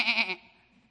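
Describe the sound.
A person imitates a goat's bleat: one short, nasal, wavering 'meh' that is loud, then fades quickly into near silence. No other talking.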